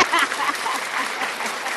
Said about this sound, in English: So we thank you. Go ahead and give her a clap.